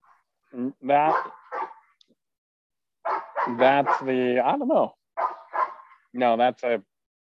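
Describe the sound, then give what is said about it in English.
A dog in a church garden gives a string of loud alert barks in uneven bursts, some clipped and some run together, separated by short pauses. “I don't know that's protection, but it's definitely alert. An alert bark, okay.”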